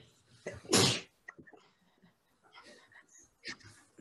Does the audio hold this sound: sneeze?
yes